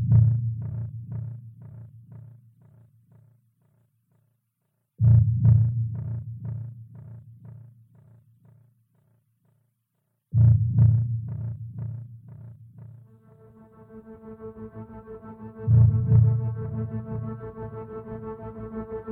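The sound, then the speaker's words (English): A deep, thudding heartbeat pulse opens a music piece, repeating in a steady rhythm, fading out and restarting twice, before a sustained, hovering musical drone swells in over the beating. “And the idea was this is sort of the subconscious of you as the android, and it starts out where you just hear that heartbeat.”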